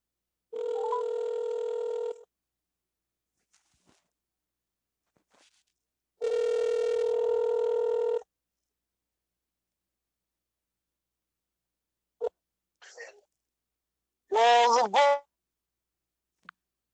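Two long, steady ringback tones of an outgoing phone call, each about two seconds with a pause between, followed by a click as the line connects and a brief voice answering.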